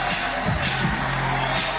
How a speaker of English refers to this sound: Crowd goes nuts, and commentary goes nuts, and TK and Dahlia come out to make the save. And it was a really cool, exciting moment.